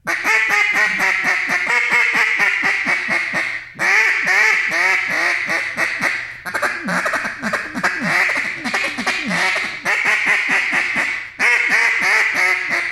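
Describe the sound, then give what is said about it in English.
A duck call blown in a rapid, continuous string of raspy quacks, loud and steady with only brief pauses between bursts, and no talking over it. “You know, so, you know, going back and forth, if I'm calling ducks, you know, and say they're right on the treetops, I'm going to start getting ducky with them.”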